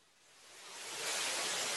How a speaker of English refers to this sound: There's a little bit of static on your audio.